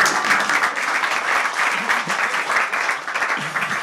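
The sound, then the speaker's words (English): A crowd applauds steadily, a dense, even patter of many hands clapping at once that holds at a fairly loud level throughout, with no voices standing out. “we can clap, I mean, it's fine.”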